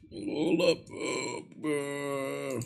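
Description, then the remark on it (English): A voice imitates burping with three croaky, throaty bursts; the first two are rough and gurgling, and the last is a longer, steadier drawn-out belch sound. “Okay, now you're just making the noise. You're not even actually burping. You're just making that noise now.”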